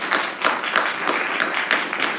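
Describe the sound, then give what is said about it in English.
A crowd of people clapping their hands together in a steady rhythm, with sharp beats every third of a second over a dense wash of scattered claps, fairly loud. “But let's clap our hands if you believe that God is good.”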